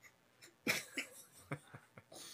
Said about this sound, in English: I like that he's gonna edit this episode and he's definitely gonna leave all this coughing in.